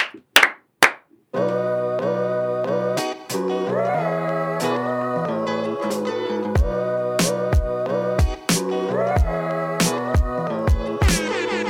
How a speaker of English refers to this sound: Clap on three. Yep. One, two, three.